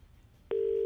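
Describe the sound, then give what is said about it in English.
After a brief stretch of quiet line hiss, a loud, steady telephone tone switches on abruptly and holds unbroken to the end, as FM 104 radio presenters place a call from a private number to a listener. “If your phone starts to ring and it's a private number, it's myself and Graham.”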